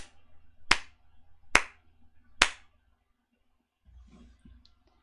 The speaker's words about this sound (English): Okay, so you raise your maul up in the air, and then it tinks, and there's a crack, and then for some reason, out of nowhere, you hear a clapping sound.